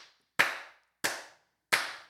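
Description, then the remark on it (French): Three sharp, loud hand claps spaced slowly and evenly, a forest ranger in the Adirondacks applauding a hiking group as it arrives, each one a crisp snap with a short ringing decay, and no talking. “Il me voit arriver au loin et là, il commence à applaudir quand il me voit arriver avec mon groupe.”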